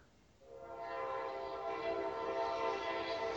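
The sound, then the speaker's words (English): A passing train's horn blares loud, a sustained, steady chord that swells in after a brief low rumble and holds to the end, with no voices. “Train. That train is loud as shit.”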